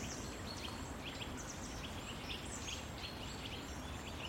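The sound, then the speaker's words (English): A pied wagtail calls from a tall tree, a scattering of thin, high chirps repeated throughout, faint over a steady wash of outdoor background noise, with no one talking. “There goes the pied whitetail.”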